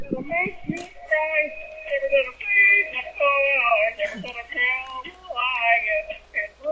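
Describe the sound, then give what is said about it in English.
A pop song sung in a nasal, cartoonish Kermit the Frog-style voice plays back steadily, its melody carried in held, wavering notes with a thin, tinny quality and little bass, played by a boy from the other side of a door. “But my son has played this under the door. Listen.”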